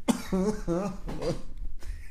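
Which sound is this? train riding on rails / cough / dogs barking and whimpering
cough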